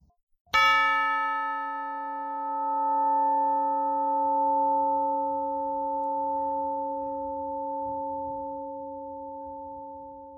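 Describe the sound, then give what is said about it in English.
A tubular glass bell strikes once with a single bright chime, then rings on with a long, clear, sustained tone that slowly fades over about ten seconds, heard alone against a faint low background hum. “am I aroused from the friendless torment of rejection by the single peal from a tubular glass bell, whose lingering chime transports me back towards the forgotten eternity hinted at in one of Magnus's poems.”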